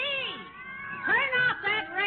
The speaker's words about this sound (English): Hey, break it up. Grab those cats before this. Oh, there was one of them up the curtain. Mine's on top of the mantel. Well, get him off of there. Get him down. Get a step ladder.